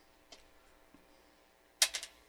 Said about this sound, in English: Oh god, I heard the little fucking 4-sided die hit the table. Clink, clink. Such a great meaty sound.